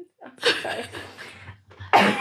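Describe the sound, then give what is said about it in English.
A person with a lingering cough from being ill a few weeks earlier coughs twice, dry and raspy, with a harsh burst near the start trailing off, then a second sharp cough at the end, fairly loud. “I was poorly a few weeks ago and I just can't get rid of this stupid cough. It's a bit like a pathetic cough.”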